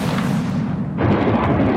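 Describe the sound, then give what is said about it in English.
A deep, booming explosion of a Ukrainian missile bringing down a Russian helicopter roars continuously for under two seconds, heavy in low rumble, with a fresh burst of crackling hiss partway through. No voices are heard. “This is the moment a Russian helicopter was brought down by a Ukrainian missile.”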